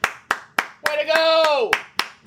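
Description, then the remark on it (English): A small group claps hands live in a steady, even rhythm, about nine crisp claps, while a drawn-out vocal cheer rises and falls over the middle of the clapping. “Let's clap it up.”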